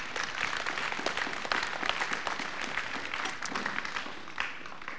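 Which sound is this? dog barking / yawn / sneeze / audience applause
audience applause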